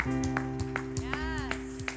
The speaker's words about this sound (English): Can we all stand up today and say, I'm going to live for Jesus, as you give God a hand clap of praise?